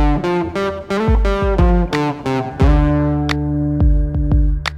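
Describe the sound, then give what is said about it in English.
A distorted electric guitar plays a quick run of picked notes, then lets a thick, buzzing chord ring out while a few sharp muted picks cut in. Loud, with no voices. “Now, if I play that same part with distortion on it, it sounds louder, even though the average volume is exactly the same.”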